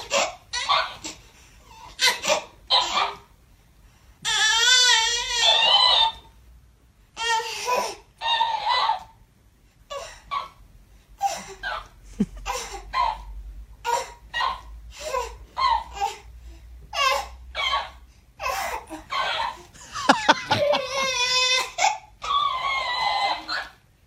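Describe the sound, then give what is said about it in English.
A baby babbles and squeals in short bursts while a voice-activated Hello Kitty toy that mimics every sound it hears answers each one with a high, warbling electronic imitation, the two trading sounds back and forth in a quick, uneven rhythm. “Listen to this audio of a baby talking to its Hello Kitty voice activated toy.”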